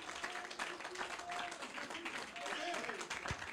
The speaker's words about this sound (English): Oh, let's give the Lord a hand clap of praise.